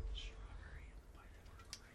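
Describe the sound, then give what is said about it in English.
Soft, breathy whispering drifts along for a couple of seconds, hushed and airy with faint sibilant hisses and no clear voiced tone, quiet against a low background rumble. “The whispering threw me off.”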